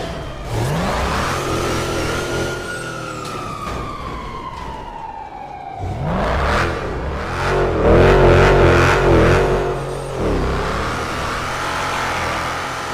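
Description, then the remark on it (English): A loud Dodge Ram pickup truck engine revs hard, its whining pitch climbing and sliding back down in long sweeps, then roaring up again over steady rumbling noise, with no one talking. “Watch what me and my Dodge Ram.”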